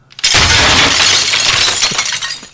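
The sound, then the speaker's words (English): A loud crash of glass shattering, a sharp burst of breaking shards that rings and tinkles for a couple of seconds before trailing off. No voices. “That's one big fortune cookie. Yeah, I forgot to tell you it was made of glass.”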